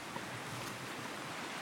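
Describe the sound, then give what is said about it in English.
A small, already low streamlet among trees rushes and gurgles steadily over hundreds of tiny rapids and little waterfalls, a continuous wash of moving water with no voices. “So there's just hundreds of little mini rapids and tiny waterfalls. It just gurgles and gushes.”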